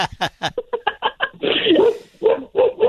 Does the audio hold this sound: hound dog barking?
yes